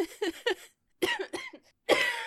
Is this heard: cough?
yes